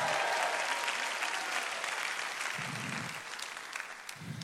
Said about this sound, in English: You've clapped. You've shouted. You've rejoiced.